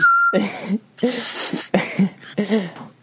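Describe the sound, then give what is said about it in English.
A short, steady high whistle sounds for a moment near the start, then gives way to animated voices talking and making expressive vocal noises. “That whistle stands for racist.”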